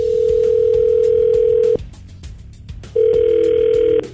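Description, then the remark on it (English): A steady telephone tone sounds loudly for nearly two seconds, stops, then a second long ring tone follows after a short pause, with faint clicks and line noise underneath, as a call is placed to a man. “well, we're going to call him up.”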